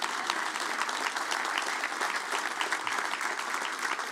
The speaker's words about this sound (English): The data shows, yeah, there's an applause there. Yeah.